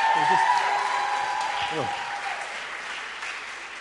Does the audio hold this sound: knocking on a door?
no